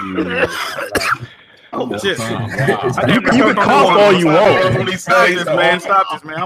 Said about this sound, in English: You can cough all you want, man.